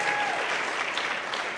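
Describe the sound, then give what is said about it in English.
A church audience applauds a couple standing to be recognized, a dense wash of clapping hands at an even, fairly loud level throughout the short burst, with no voices standing out. “Give them another hand clap.”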